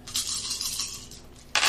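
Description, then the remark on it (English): Two feat dice rattle and tumble across a hard tabletop during a board game, both landing on a Gandalf face, for about a second, then a second, sharper clatter bursts in near the end. Fairly loud, with no voices. “You just rolled 2 feet dice and got a Gandalf on both.”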